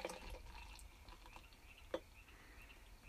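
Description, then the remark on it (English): Quiet liquid sounds of Bass and Guinness beer being poured into a glass to make an 84-ounce black and tan, a soft steady trickle with a few brighter drips, one sharper splash near the end, and no talking. “So you go the lighter beer first, the Bass, and then the Guinness on top?”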